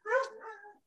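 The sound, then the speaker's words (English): A single dog bark, drawn out into a short yelping cry that trails off after nearly a second. It's clear, with no talking over it. “Hey, my dog's here. Hey, you never see the dogs. You hear them.”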